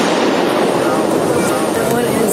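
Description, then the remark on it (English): A loud, sustained barrage of rapid gunfire inside Joel Osteen's megachurch in Houston, recorded on Houston police video, shots packed so closely they blur into a continuous crackling roar, with voices faintly mixed underneath. “This morning, new video from Houston police capturing the barrage of gunfire that sent worshipers scrambling for their lives inside Joel Osteen's Houston megachurch.”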